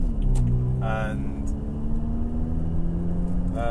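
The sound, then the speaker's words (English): A steady, loud rumble of road and wind noise inside a moving car fills the whole recording, with a voice faintly mixed in underneath. “I think a lot of this is that I think my voice gets drowned out by a lot of the noise of the road and the car and the wind and everything else.”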